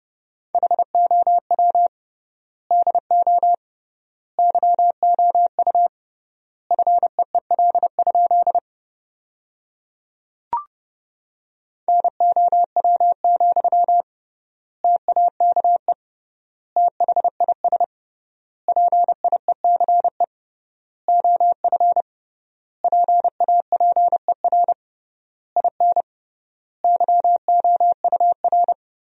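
Rapid Morse code beeps at 30 words per minute with triple word spacing, sending sentences made from the top 400 words: a steady mid-pitched tone keyed into quick dots and dashes, grouped into words with long gaps between them, with a brief click partway through.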